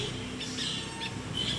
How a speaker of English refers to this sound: Birds, you guys. Here's what baby lovebirds look like and sound like